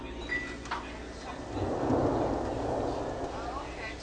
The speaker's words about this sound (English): Back to just a field recording. Just a light rain.